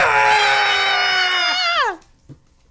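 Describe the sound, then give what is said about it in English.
A loud, sustained scream from several voices at once, holding a steady high pitch for nearly two seconds before sliding down and cutting off, followed by near silence. “Have you seen the secret word? Scream real loud, okay?”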